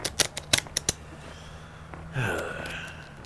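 A deck of tarot cards being shuffled: a quick run of crisp snapping flicks, a brief pause, then a softer, longer rustling slide of cards, with no talking.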